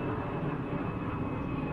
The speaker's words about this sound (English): Is that plane going over you or me? Yeah, I think it's going to land on my deck. I heard it right in my ear.